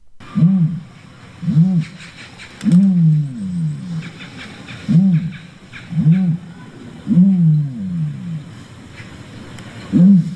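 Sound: ostrich booming call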